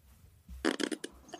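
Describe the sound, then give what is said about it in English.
Garbled, broken-up call audio: a quick string of harsh, distorted fragments cut apart by short gaps, with faint low hum before and after. “I think it's getting choppy.”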